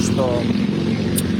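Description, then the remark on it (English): Motorcycles rumble past on a street, a loud, steady low engine drone filling the brief moment, with a faint murmur of voices underneath. “At another moment, we could hear motorcycles rumbling past, like he was on the street, walking home.”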